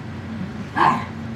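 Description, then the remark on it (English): A single short dog bark breaks through a steady low hum, sharp and moderately loud, then quiet resumes. “Jesus Christ, this dog's killing me.”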